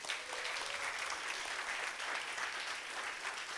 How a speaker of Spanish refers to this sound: Y ahora un gran aplauso para que nos despertemos.